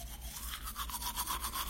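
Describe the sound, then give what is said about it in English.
Rapid, scratchy toothbrush strokes scrubbing teeth back and forth with a thin, white, sudsy toothpaste without fluoride, a wet, bristly swishing that repeats several times a second with no talking. “Also, is it getting sudsy? Yes, it's very white and sudsy. It's also rather thin for a toothpaste.”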